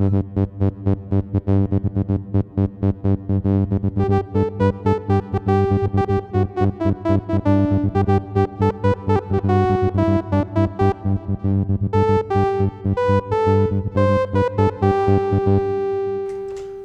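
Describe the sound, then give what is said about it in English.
A strange self-powered machine, resembling a modern-day saxophone, hums and whirs into life with a steady electronic pulse, adding layers of shifting buzzy tones as it builds and sustains for several seconds, loud, with no voices. “You hear the, you basically hear the machine whir up to life, and you know that there's some sort of strange, strange object that is self-powered, and this is what it sounds like.”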